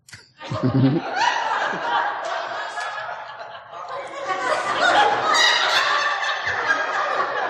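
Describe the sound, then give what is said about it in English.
A person imitates a chicken, letting out a run of bursty, cackling clucks for several seconds, fairly loud, with laughter-like chuckling mixed in. “Chicken, okay.”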